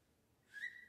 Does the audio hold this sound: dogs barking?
no